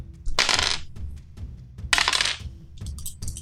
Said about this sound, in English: This guy rolling dice, I thought he was all digital.